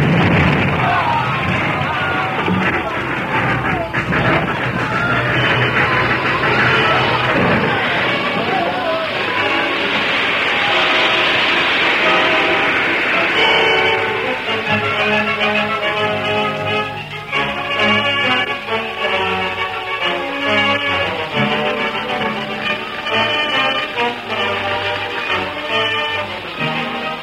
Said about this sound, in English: Frantically, he applied the brakes. The train slowed, but its momentum forced it on. The edge of the gorge was deep. For a second, the engine seemed to hesitate. Then it toppled over, crashing into the gorge below.